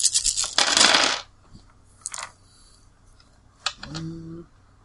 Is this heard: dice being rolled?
yes